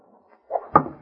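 A brief rising whoosh ends in a sharp, solid thunk as an arrow flies in and strikes timber, loud against an otherwise quiet background.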